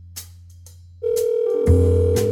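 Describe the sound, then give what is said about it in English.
An electronic ring tone of an outgoing phone call to the president of EOS Worldwide starts after a second of quiet clicks, a steady sustained tone joined by higher stacked tones, loud, with no talking. “Oh, now it's ringing.”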